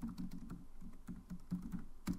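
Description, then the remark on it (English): Quick, irregular clicking of keys on a computer keyboard as someone types the search 'why are cats mean', a steady patter of sharp taps with a few louder keystrokes, and no voices. “So I typed in why are cats mean, and it came up as so mean.”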